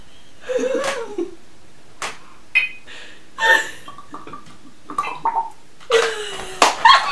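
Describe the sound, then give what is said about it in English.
Liquid pours back into a container with gurgling, glugging bursts and bubbly rising tones, coming in uneven spurts over several seconds, fairly loud, with no talking. “Oh, and the pour back is the best.”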